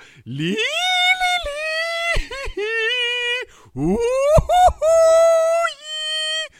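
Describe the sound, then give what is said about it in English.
A person imitates a whale call as heard over a vessel's sound system, with long, sustained vocal moans that swoop upward and hold steady, sung in two drawn-out phrases with brief breaks, loud and tonal with rich harmonics. “And it's nothing but, and my friend is doing this amazing, like, stretching his arms out, going, it's just a whale.”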